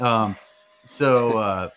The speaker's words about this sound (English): Now my turn for noise, my robot vacuum is starting up. Anyway, I'll turn that off.